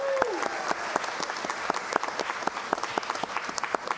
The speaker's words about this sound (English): And can't forget those sixth graders and those eighth graders moving on up to junior high and high school. So one more round of applause for everyone.